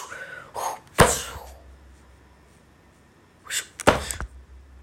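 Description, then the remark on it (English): Two sharp whooshes of an ice spear flying past, one near the start and one near the end, each a quick rising swish ending in a hard impact thunk, with a quiet low hum between them. “She's a ice spear pass by.”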